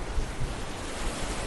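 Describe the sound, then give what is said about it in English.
Ocean waves crash steadily against the shore, a continuous broad roar of surf with no voices, rolling and washing at a fairly even moderate level throughout. “But for now, let's just take 10 seconds and relax to the sounds of these ocean waves crashing against the shore.”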